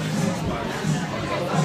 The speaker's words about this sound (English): Watch and find out tonight, 7 p.m. Eastern, on the Entrepreneur Facebook page as the crowd continues making its way in here.